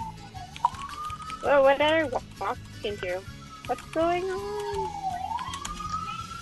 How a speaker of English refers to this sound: And we also hear the sirens more, though. Unfortunately, I live on the street where this happens.